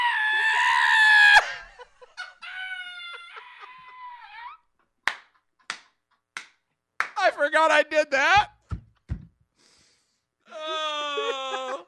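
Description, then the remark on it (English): A person imitates husky howling with several wavering, high-pitched wails and yowls that slide up and down in pitch, broken up by a few sharp clicks and a brief spoken remark. “Well, these Huskies are howling.”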